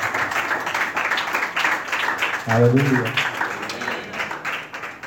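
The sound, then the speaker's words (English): Steady crowd applause welcoming a preacher to speak fills the whole stretch, a dense wash of clapping, while a single voice calls out briefly over it partway through. “So with a round of applause, let's welcome”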